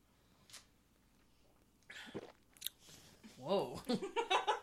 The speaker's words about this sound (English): Whoa. That was a gulp.